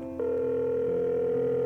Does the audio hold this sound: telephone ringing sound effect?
yes